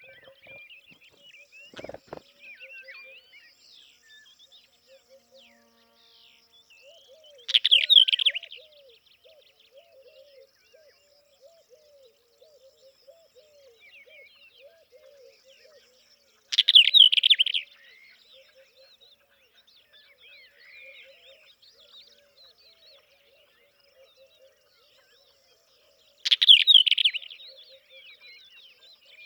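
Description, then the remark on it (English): A Western black-eared wheatear sings in May in short, scratchy bursts repeated about every nine seconds, with faint chirps and twittering from other birds filling the gaps in an otherwise quiet outdoor setting. “You were saying that the song in May of the Western Black-Eared Wheatear doesn't have the variety that it did when it first arrived.”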